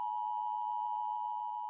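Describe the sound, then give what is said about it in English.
A steady, high-pitched alert beep holds one unchanging tone for nearly two seconds, like a broadcast test signal, sounding clean and continuous with no voices. “Beep. This is just a test of the fact that we're going to go listen to a sponsor now.”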